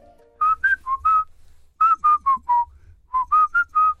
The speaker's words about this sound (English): people who whistle, what is the point of whistling? What pleasure can you possibly get from whistling? It certainly isn't nice to listen to. It just cuts right through your brain.